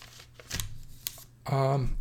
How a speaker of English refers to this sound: Ruffle paper. Let's see. I'm going to ruffle some paper, too.